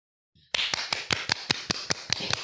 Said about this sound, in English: That was us clapping, just by the way.